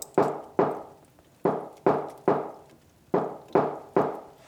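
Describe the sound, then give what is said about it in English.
Knocking on a door: two groups of firm knocks, three sharp raps, a brief pause, then three more, with no voices. “can you get the door?”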